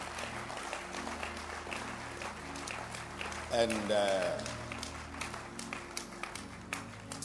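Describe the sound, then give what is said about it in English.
A church audience claps steadily throughout to show they understand the teaching, a dense patter of many hands at moderate volume, with a brief swell of cheering voices midway and a speaker's voice faintly underneath. “Clap your hands if you understand.”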